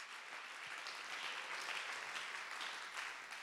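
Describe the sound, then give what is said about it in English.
A church audience claps to give God praise, a dense wash of many hands clapping at once with no clear rhythm, holding an even loudness throughout. “Oh, clap your hands and give God the praise.”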